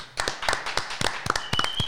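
Brief, steady hand clapping: a quick series of sharp, evenly spaced claps at a moderate volume, with no talking over it.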